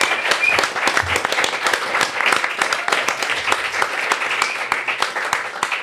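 A live audience bursts into sustained applause for everyone who attended, dense overlapping claps filling the room steadily for several seconds, loud with a lively crowd texture.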